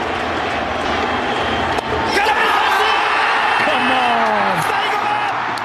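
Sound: stadium crowd roaring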